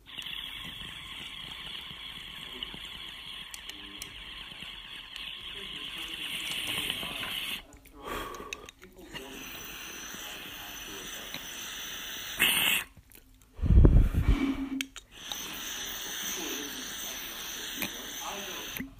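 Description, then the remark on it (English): A hot rosin dab hit through a water rig late at night: a steady sizzling hiss runs throughout, broken by short gaps, then a loud burst of gurgling, bubbling water before the hiss returns. “Alright, we're gonna go in a little hot on the rosin because I like doing a little hot in the late night.”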